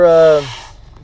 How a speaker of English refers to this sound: Excuse me, I have to blow my nose here.